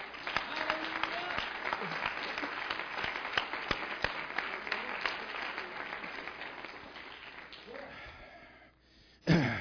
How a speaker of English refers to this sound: Give him a hand clap of that.